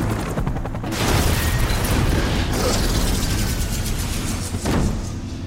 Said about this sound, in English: It was a really romantic movie, Die Hard. McLean's car smashes through a toll booth, launching into the air straight at the chopper.